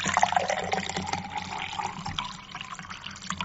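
Unflavored Arrowhead sparkling water pours steadily into a glass for a few seconds, a continuous splashing gurgle with a faint fizzy hiss underneath; no one speaks.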